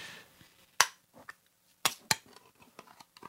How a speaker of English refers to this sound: Okay, this time I'm going to remember to open the can next to the microphone and probably squirt pineapple juice all over myself, which is okay because we've already established how much I love pineapple juice.